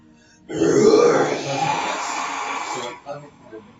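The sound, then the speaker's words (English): A person imitates a crocodile roar as the sound of a thaumaturgy spell, with a loud, rough, guttural growl lasting about two and a half seconds, low and rasping, fading into quieter breathy sounds. “So you make a thaumaturgy crocodile roaring sound.”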